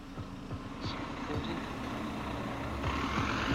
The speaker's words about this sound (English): So, wait for the bus to go past. This is stop number one. I'm just coming onto King Street.